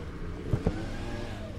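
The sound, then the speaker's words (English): A leaf blower's small engine drones steadily with a buzzing, harmonic motor tone throughout, broken briefly by two soft thumps partway through. No one speaks. “So we're now moving away from the leaf blower.”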